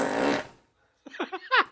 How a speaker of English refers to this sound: because it's not that hard to pick up a crystal clear fart.